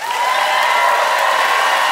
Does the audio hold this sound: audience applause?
yes